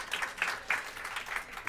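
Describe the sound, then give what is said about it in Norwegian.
A short burst of audience applause, many hands clapping in a dense, crackling patter with a few louder swells, moderately loud and with no voices over it. “Første applauskolen der, ja, fint.”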